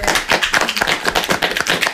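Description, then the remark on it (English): A small group, an ensemble cast applauding themselves for participating, claps together in a steady, overlapping patter of sharp, bright hand claps that continues at an even loudness for a couple of seconds, with no voices. “And let's do applaud yourselves for participating.”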